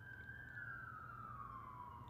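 An emergency vehicle siren wails steadily, its tone slowly sliding downward over a low rumble of background noise, with no one speaking.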